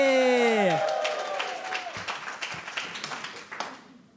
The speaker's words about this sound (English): And keep that applause going